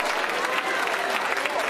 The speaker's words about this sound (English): When they take up an offering, everybody claps. Why do they do that? Because we're thankful for the opportunity to sacrifice unto the Lord.